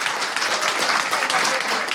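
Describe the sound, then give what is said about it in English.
A steady round of applause from an audience, many hands clapping densely and evenly for a couple of seconds, fairly loud, with a faint murmur of voices underneath. “There was a round of applause there for me,”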